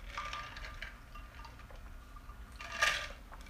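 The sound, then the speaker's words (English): Ice clinks against a glass as someone takes a quiet sip of a cold Arnold Palmer, unsweetened Mott's iced tea with lemonade, with a brighter clatter of ice near the end and no talking. “I think I'll have a sip now.”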